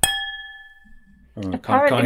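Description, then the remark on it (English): A big red wine glass is flicked once, giving a clear, bright ping whose tone rings out and fades over about a second before someone starts talking. “I've got a funny big red wine glass. It's got a very pleasing sound when you ping it out.”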